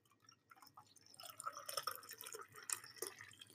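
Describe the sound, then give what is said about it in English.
A second coffee being poured into a cup, a steady trickle with soft splashing and dripping that builds slightly over a few seconds, fairly quiet, with no voices. “Right, we're gonna go for the world famous coffee pour.”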